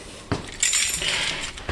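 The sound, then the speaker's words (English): Keys jangle and clink as a lock turns, with a sharp metallic thunk at the start and end, as the Curator of Entomology at Harvard's Museum of Comparative Zoology unlocks a heavy metal door to a high-ceiling room holding the entomology collection. “Farrell unlocks a heavy metal door, and we walk into a high-ceiling room lined with rows of gray metal”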